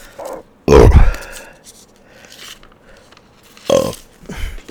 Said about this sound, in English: Burping into a fucking mic. Who does that? That burger / beer is coming up.